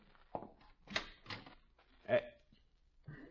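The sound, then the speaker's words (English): A front door being opened: a handful of short clunks and rattles from the latch and handle, spaced unevenly over a few seconds, with faint voices murmuring underneath. “You get the scissors, I'll get the door.”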